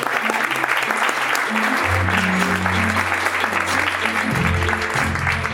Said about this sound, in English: Ladies and gentlemen, round of applause for my mentor, Tonya Williams.